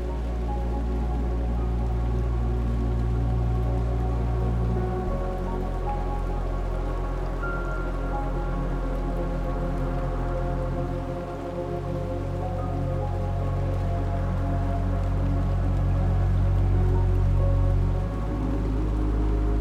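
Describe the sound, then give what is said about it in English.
Steady raindrops patter onto pool water, a dense, continuous splashing, with a low rumbling hum underneath and no voices. “Relaxing Raindrops in the Pool”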